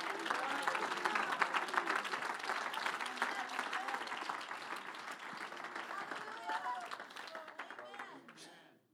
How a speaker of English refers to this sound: Come on, somebody, clap your hands to the Lord. I wish our elders would clap your hands to the Lord tonight.